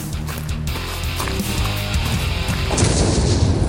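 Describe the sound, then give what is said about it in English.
A loud, rumbling explosion effect booms over a dense music bed, its roar swelling toward the end and filling the whole short stretch with heavy, sustained low-end noise. “Whoa, he walked away with an explosion.”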